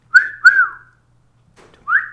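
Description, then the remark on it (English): A person whistles a short, bright tune: two quick sliding notes close together, a brief pause, then one more rising note. The whistling is clear, with no talking. “Ooh, guest whistle. My dream come true.”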